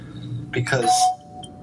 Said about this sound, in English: Because you know, often the pizza bell will go for no reason at all when you're in the middle of saying something.